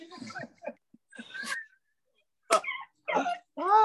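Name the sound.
dog whimpering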